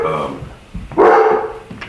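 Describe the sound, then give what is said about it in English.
Dogs bark: a harmonic bark at the start, then a louder, drawn-out bark in the middle, with a few fainter yips trailing off toward the end. “Dogs. Dogs are here.”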